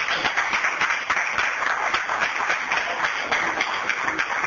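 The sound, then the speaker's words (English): A church audience applauds and prays for the 17-year-olds called to sit on the front pew, many hands clapping at once in a dense, continuous patter that holds at an even level throughout, with no talking heard over it. “Give me a hand, clap and pray for all the 17 years old.”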